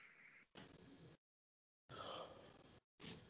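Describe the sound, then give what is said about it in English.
A person yawns, a breathy drawn-out exhale broken into a few quiet bursts with a brief tonal stretch in the middle, with no talking. “This yawn is exactly what the Flyers are making me do right now.”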